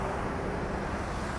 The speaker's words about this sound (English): Sorry about that. There's a truck going past.